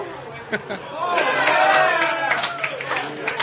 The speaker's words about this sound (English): It is a raucous crowd tonight at Jake's Fine Food and Spirits. Well, it is.